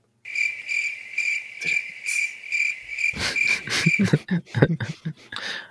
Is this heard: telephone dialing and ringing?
no